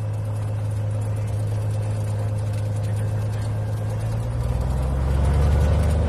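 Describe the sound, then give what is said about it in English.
A Cessna airplane's engine drones steadily at a low pitch, then revs up louder and higher toward the end as it starts its takeoff run. No one speaks. “Scott Simonton, a university lecturer, is piloting his Cessna airplane with Haltom in the back seat.”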